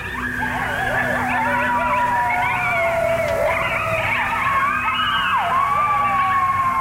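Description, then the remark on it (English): A chorus of coyotes or wolves howling at the moon, many overlapping wavering, sliding cries and yips rising and falling continuously, over a steady low background hum. “And those coyotes or wolves are howling at the moon.”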